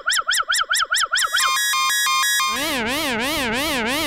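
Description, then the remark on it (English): Analog synth alarm effects in sequence: a fast train of about seven chirping sweeps, then a steady stepped beeping tone, then a continuous warbling siren that rises and falls. Loud, with no talking. “Alarms.”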